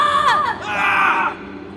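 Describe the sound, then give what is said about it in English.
Two overlapping high-pitched screams rise and waver for over a second, with a brief crashing burst near the start as stairs and a floor collapse, fairly loud with no talking, heard from across the road. “You all hear a crashing boom and both of us scream from across the road.”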